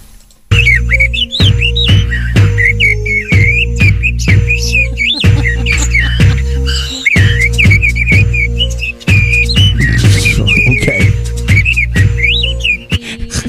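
Parrots whistle a bouncy, wavering melody, loud, over a steady thumping backing beat with regular rhythmic pulses throughout.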